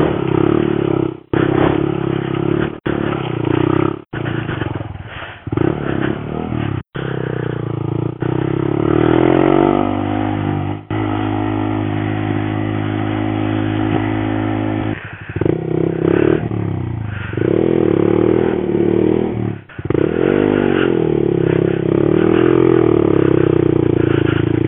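A small Monkey minibike engine revs and putters as it is ridden by a river on a gravel track, its pitch rising and dropping as it moves, settling into a steady buzzing drone midway, with occasional clattering bumps throughout.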